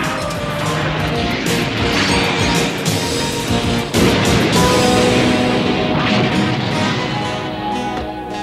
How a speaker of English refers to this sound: Who crashes into the hillside and screams to the ground.